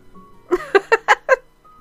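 A pet cat named Milo lets out a quick run of five short, mid-pitched meows in a steady rhythm, fairly loud, with quiet before and after and no talking.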